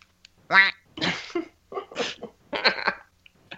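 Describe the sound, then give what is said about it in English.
A person's voice imitates a duck, letting out about five raspy, nasal quacks in a quick, uneven series, fairly loud with no talking around them. “Okay, so I'm just gonna be a duck.”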